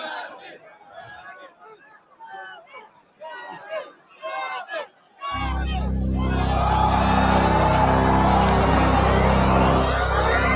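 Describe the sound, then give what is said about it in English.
A crowd murmurs and chatters while waiting for about five seconds, then a loud, dense rumble with a deep low drone abruptly swells in and drowns the voices. “So listen to the crowd as they're waiting.”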